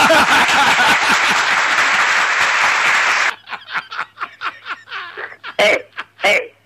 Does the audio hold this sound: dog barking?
no